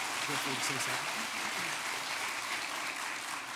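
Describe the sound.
An audience breaks into steady, sustained applause, a dense crackle of many hands clapping at an even loudness, with a faint murmur of voices underneath in the first second.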